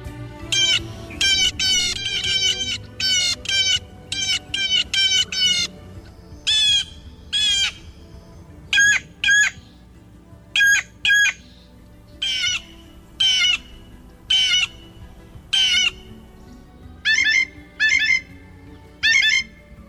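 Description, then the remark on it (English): A series of blue jay calls, harsh squawks and clear whistled notes repeating in quick bursts and spaced phrases, loud with no talking, ending with the blue jay imitating a red-tailed hawk. “Let's give a listen to some of the many sounds and calls made by that clever member of the intelligent corvid family that also includes crows, ravens, and magpies.”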